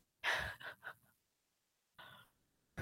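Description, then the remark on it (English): Breathy exhales and inhales over a phone line: a heavy sighing breath with a few fluttering pulses, a pause, then two softer breaths. No one speaks. “I can hear some breathing.”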